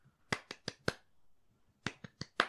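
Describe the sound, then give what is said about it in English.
Sharp hand claps in a song being played, in two sets of four, evenly spaced and fairly loud, with a brief quiet gap between the groups and no talking. “It's 4 claps, but then they clap on the beat when the beat drops.”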